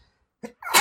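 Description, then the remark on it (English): A single sharp sneeze: a quick inhaled catch followed by a loud, bright burst of breath, with no talking around it. “Bless you. I'm allergic to murder.”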